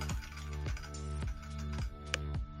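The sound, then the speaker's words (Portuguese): Keys clack on a computer keyboard as someone types while installing a torrent program, in irregular, spaced-out, distinct strokes over a steady low humming background with no one speaking. “Quem tá digitando aí, gente?”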